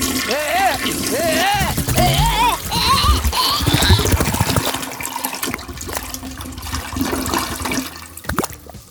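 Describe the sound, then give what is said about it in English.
A toilet flushes loudly, a rushing, gurgling swirl of water that fades to a softer trickle as the tank refills, with a voice briefly audible over the start. “You know, I'd recommend you get a full and total flush, too, you know?”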